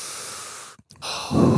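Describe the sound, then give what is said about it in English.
A long, airy deep inhale, taken as a relaxation breathing exercise, is followed by a brief pause, then a fuller, louder exhale with a breathy rush. The breathing is alone, with no talking. “You know, I just take a few deep breaths and just.”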